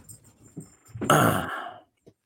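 A dog breathes heavily right at the microphone, one loud, rasping breathy burst lasting under a second, preceded by faint low snuffling and rustling, with no talking.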